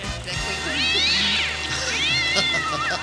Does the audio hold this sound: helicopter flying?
no